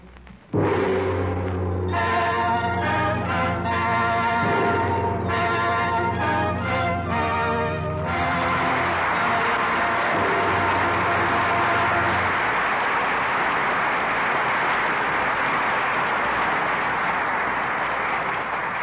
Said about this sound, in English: That applause is for the valor of China and the sincere performances of Loretta Young, Alan Ladd, and William Bendix.